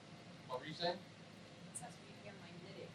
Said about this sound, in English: If anything, we can hear the air conditioner.